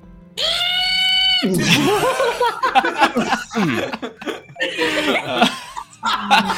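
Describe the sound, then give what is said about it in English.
A person imitates a bat scream with one loud, shrill, sustained vocal screech lasting about a second. It is followed by several people laughing and chattering. “… is gonna bat scream.”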